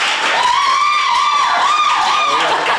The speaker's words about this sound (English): Good, time will tell. Applause for Annie B. Jones.